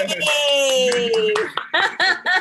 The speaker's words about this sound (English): Hey, hand clap on that.